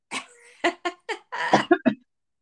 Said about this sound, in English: I'm so sorry about the cough.